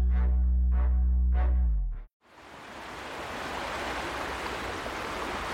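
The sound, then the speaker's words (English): After a brief stretch of unrelated tonal sound and a sudden cut, the River Usk rushes steadily over a set of rapids in light rain, a continuous hissing roar with no voices. “I'm down on the River Usk and looking upstream from a set of rapids”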